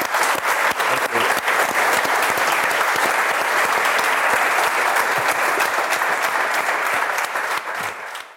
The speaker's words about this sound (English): big round of applause.